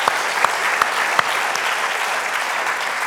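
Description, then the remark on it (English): A church audience bursts into sustained, dense applause for Jesus, a steady wash of many hands clapping with a few sharper individual claps standing out early on, and no voices heard over it. “And come on, we ought to give Jesus our best clap in that moment.”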